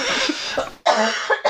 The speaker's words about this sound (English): I've been fighting the urge to cough for so long. You made a half hour without coughing.